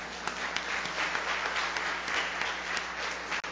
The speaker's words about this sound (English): Now you can clap.